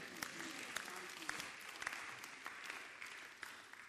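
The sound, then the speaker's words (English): A group of people claps hands together to thank Jesus, a dense, steady patter of many overlapping claps lasting several seconds with a few sharper individual claps standing out. “Clap your hands and say thank you, Jesus.”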